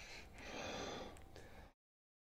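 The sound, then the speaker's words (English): Loud heavy breathing from a man showing symptoms of anaphylactic shock, a rough, rasping rush of air lasting under two seconds, then abrupt silence. No one speaks. “I don't like the heavy breathing.”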